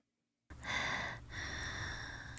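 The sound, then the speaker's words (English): Heavy breathing: two long, loud, rasping breaths follow a moment of silence, the second drawn out after a brief pause, with no one speaking. “Some heavy breathing.”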